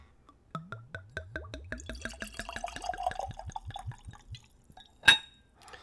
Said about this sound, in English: Alright, let's go for a pour.